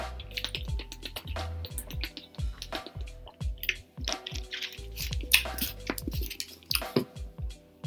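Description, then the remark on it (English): Drinking sounds as someone sips pineapple and passion fruit juice: repeated wet sips and swallows with soft liquid squishes and small clicks, coming in a steady rhythm, fairly loud, with no talking. “I'm actually drinking right beaner now. Pineapple and passion fruit.”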